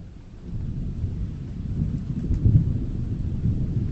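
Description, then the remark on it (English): A deep, continuous rumble of thunder rolls low and heavy, swelling after a quieter start and peaking midway before settling into a steady growl, with a faint rain-like hiss above it. “Thunder behind us and thunder ahead.”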